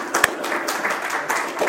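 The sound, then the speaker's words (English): A crowd applauds with dense, steady clapping that fills the whole stretch at an even loudness, many hands blending into a continuous patter with a few sharper claps standing out. “You don't have to clap this time.”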